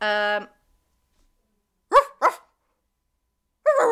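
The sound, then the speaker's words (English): A person's voice imitates a dog barking: two quick bark-like yelps in a row, then a longer one, with short voiced sounds at the start and silent gaps between. “I don't want to bark too much because there's an actual dog in the house.”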